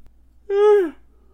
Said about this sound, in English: I have been yawning way too much recently.